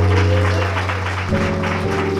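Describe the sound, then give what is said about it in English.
A crowd applauds steadily, a dense wash of clapping mixed with cheering, while low sustained organ-like chords hold underneath and shift pitch partway through. “Give yourself a round of applause for coming out tonight.”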